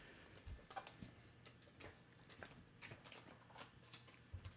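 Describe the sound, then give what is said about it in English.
Cards being shuffled, a series of soft, irregular papery snaps and taps spread across a few seconds, with no voices over them. “I'm shuffling them up.”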